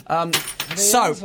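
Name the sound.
keys jangling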